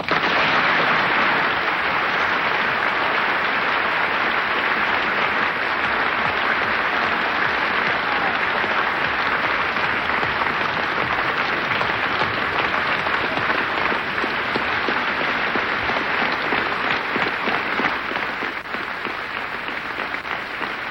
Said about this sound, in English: Tremendously moving moment now, the whole of the Union standing and applauding this magnificent speech of James Baldwin. Never seen this happen before in the Union in all the years that I have known it.